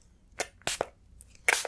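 A spray bottle gives three quick, hissing spritzes at an uneven pace, the final burst the loudest and longest, with no talking in between, as a person is sprayed down.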